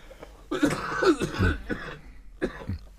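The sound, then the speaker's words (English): A person coughs several times in a quick, rough burst, then a brief pause and one or two more harsh coughs follow. “I am of the view that although there is bias, sorry, I'm coughing.”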